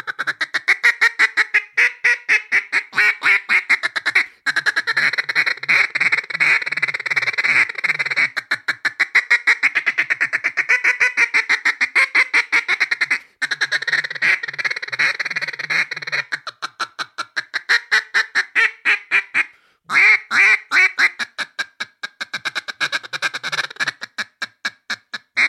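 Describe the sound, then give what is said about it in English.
A handheld duck call blown in long runs of rapid, clipped quacks, greeter strings and chattering single and double cuts, loud, pausing only briefly a few times, with no talking. “Then you can start adding quacks and lonesome hens and strings of greeters and.”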